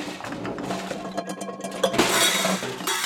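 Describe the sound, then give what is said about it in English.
Shards of broken glass on the floor, among scattered carrots, clink and scrape as they are shifted about, a busy run of bright chinks and rattles swelling into a denser crunchy clatter toward the end. “Just step over that broken glass and the carrots. Here, let me clear that chair off for you.”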